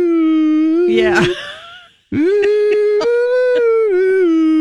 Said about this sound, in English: Can you hear that? That's the iconic sound of your local ice cream truck making its way up the block.